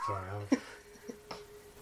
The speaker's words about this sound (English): That just went off. That cat ball.